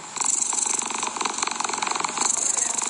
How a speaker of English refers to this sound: No, it's a cat purring.